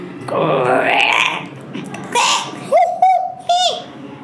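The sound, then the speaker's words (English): Monkey calls: a long, rising shrill whoop followed by a breathy burst, then three short, sharp hooting cries in quick succession, loud and alone. “It was a special day for a species that makes the sound.”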